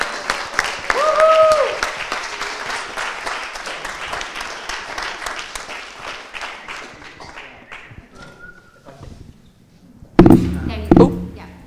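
An audience stands and applauds to honor a speaker as he comes to speak, with steady, dense clapping that gradually fades over about nine seconds, with a brief high whistle early on, then a couple of loud thumps at the end.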